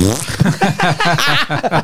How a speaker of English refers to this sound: Boy, if my work's got a Tesla. Is he? He's got a fart noise for his horn. Brilliant. Can work it with your phone, can? Aye.